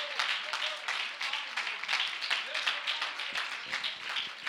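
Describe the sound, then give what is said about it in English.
An audience claps steadily for the Lord during a sermon, many hands making a dense, continuous patter of applause with faint voices mixed underneath, moderately loud throughout. “I wish somebody just clap your hands of the Lord.”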